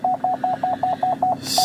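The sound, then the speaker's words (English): A steady run of about eight short, mid-pitched electronic beeps, evenly spaced roughly five per second, with a low hum underneath and a rush of hiss breaking in at the very end. “Don't mind the fucking beeps.”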